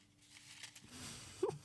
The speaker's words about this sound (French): Je pioche le petit papier dans le bol.